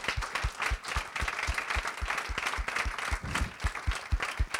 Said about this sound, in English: Can I have a round of applause for all of the incredible speakers who came today?